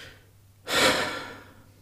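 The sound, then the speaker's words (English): A single long, deliberate exhale, fairly loud, a breathy rush of air that swells quickly and then fades out gradually over about a second, with no talking. “So the signs of it, so as you know, as you did it and as I did it there, of breathing out, you know, we spoke about it before, of activating the parasympathetic nervous system.”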